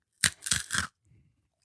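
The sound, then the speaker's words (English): A crunchy, pizza-smelling snack that looks like a dog treat being chewed: three quick, crisp crunches in a row, a short pause, then another crunch beginning. Moderately loud, with no talking over it. “Okay, I'll try it.”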